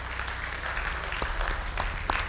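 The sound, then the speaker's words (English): A crowd applauds steadily for a new member joining the church family, many hands clapping at once in a dense, continuous wash of claps with no voices over it. “Just give him a nice big round of applause.”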